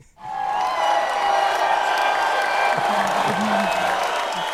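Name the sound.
crowd applause and cheering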